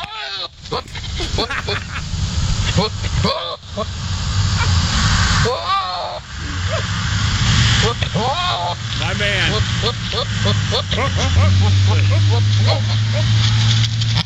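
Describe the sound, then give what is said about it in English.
Goats vocalizing while mating: a steady stream of nasal, honking bleats and grunts over a low rumble, with a person briefly speaking partway through. “Here's some goat mating.”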